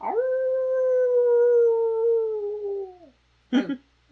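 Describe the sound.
A person imitates a wolf howl: one long, steady, sustained tone for about three seconds, trailing off downward, followed by a brief voiced sound after a short pause.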